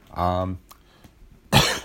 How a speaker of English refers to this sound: sorry, there's a bit of a cough, a niggling cough that I've still got. I had COVID leading up to Christmas,